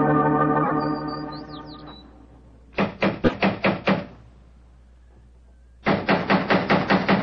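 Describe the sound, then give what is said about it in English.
Two loud bursts of rapid knocking on a door, each about six or seven sharp raps, separated by a few seconds of quiet, following a fading droning tone with a brief high chirp. “He's home by the devil, doesn't he answer the door?”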